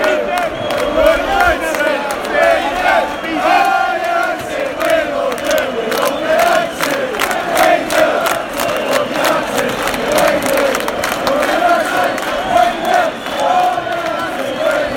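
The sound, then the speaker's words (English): A large football crowd chants loudly and steadily in a stadium in the last seconds of a United match, recorded from the council house, a mass of voices holding a sung, droning tone throughout, with scattered claps and shouts cutting through the continuous roar. “There's about 20 seconds left here at the council house, so I thought I'd record it so you can hear it.”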